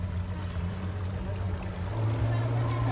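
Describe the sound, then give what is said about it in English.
A loud engine drones steadily, then revs up higher and louder partway through, with rushing water noise around it, like a motorboat under way. “You're revving it. I can't hear you. They're revving it.”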